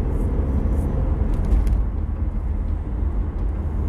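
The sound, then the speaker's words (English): A steady, low rumble of a car engine running while driving, after a vapor canister hooked to the gas tank was replaced, with continuous road and cabin noise, fairly loud throughout. “Car runs so much better now.”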